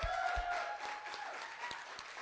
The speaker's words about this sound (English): YWAMers, can we thank …? Can we just clap for them?